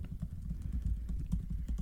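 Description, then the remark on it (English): Rapid typing on a computer keyboard while searching Google, a quick irregular run of light clicks and taps on the keys with no voices over it, steady and moderately soft throughout. “You know, I've got a Google machine. Google it.”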